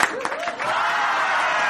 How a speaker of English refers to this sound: We do need some applause here.